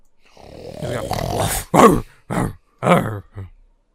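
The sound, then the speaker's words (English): A voice imitates a drawn-out, rising moan, then four short, loud snorting grunts in quick succession that fade toward the end. No words are spoken. “Just making weird moaning sounds and snorts.”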